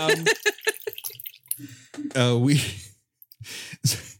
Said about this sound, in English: I'm sorry, I poured coffee. I didn't realize how loud